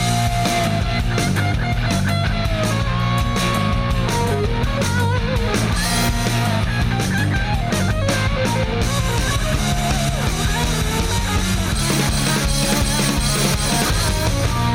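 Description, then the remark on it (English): A loud, driving rock theme song made by a musician of a band, with steady pounding drums and dense, distorted guitars playing continuously, full-band and instrumental with no singing or talking. “Thank you once again to … from … for making us that rocking new theme song.”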